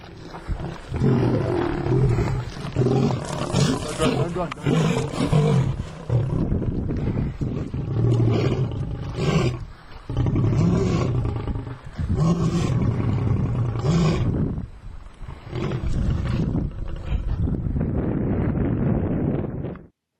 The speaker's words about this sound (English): And just so that you know this works in the real world, here's a video of someone being charged by a lion.